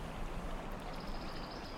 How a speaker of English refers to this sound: This river's going a little fast. Just don't fall in.